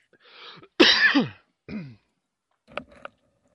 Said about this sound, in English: Sorry, still coughing from the Nerf darts.